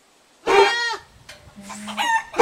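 A loud animal call imagined as a Barbarian barking goat's bark in a forest, like a bark crossed with a bleat: one harsh, harmonic burst, a brief pause, then a strained, crowing cry. No one speaks.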